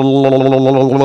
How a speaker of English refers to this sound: Let me clear my throat because I don't want to have a stuffy throat. Let me gargle.